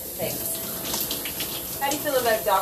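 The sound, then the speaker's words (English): Running shower water makes a steady hiss throughout, with muffled voices briefly talking over the spray near the end. “If I'm gonna have to podcast 365 days in a row, it's inevitable that one of these podcasts will have to be in the shower naked.”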